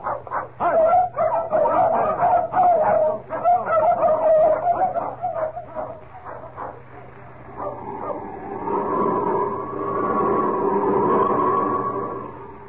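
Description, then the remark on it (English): Several dogs, including Chico and Frisco, bark excitedly in quick, overlapping bursts for several seconds, loudly, before the barking gives way to a steady, sustained droning hum. “I'm going to take these dogs part of the way, just for the sake of appearances.”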